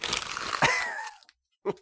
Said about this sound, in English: We could have the sound of paper crumbling since it's a revision segment. How would that be? Here. Ripping, maybe.